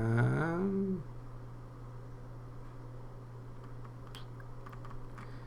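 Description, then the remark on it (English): Soft, scattered clicks of typing on a computer keyboard as someone searches for a text, light taps coming in short irregular bursts over a steady low electrical hum, after a brief tonal sound at the start. “I'm not good at typing and thinking and talking at the same.”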